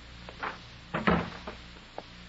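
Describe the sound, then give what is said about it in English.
A door being closed: a few light knocks and rattles, then a solid wooden thud in the middle and a final click of the latch, with no voices. “Close the door.”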